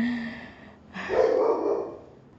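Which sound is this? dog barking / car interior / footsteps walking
dog barking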